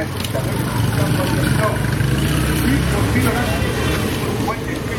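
Dense, steady street din in Lagos, Nigeria, of engine rumble and traffic noise with indistinct voices of people and music mixed throughout, a constant crowded wash of sound with no pauses.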